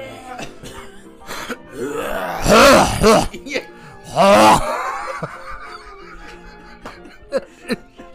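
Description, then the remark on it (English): Two loud, gravelly throat-clearing groans from a man's voice mimicking an old man, each a harsh rasping burst about half a second long, with quieter vocal sounds and breaths around them. “Yeah, it was old man noise, because like, every old man I've ever heard in my life.”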